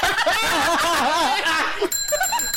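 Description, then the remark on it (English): A wavering, giggly vocal sound fills most of the moment before a bright bell rings near the end, its metallic tone hanging briefly. “Well, we can move the bell away from him.”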